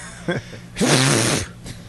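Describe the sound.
A short, quiet sneeze-like burst comes first, followed by a loud, drawn-out, strongly voiced sneeze with a hissing, breathy blast.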